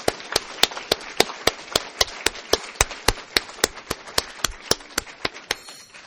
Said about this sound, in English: Please join me in giving them another round of applause.